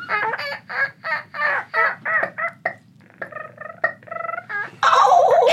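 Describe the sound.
A woman imitates a turkey gobble, a loud, rapid rattling call in a series of warbling bursts that ends with a harsh, noisy rush of sound.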